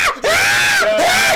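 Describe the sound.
A woman in a movie screams twice in quick succession, loud and shrill with a wavering high pitch, each cry sustained and nearly back to back with only a brief breath between.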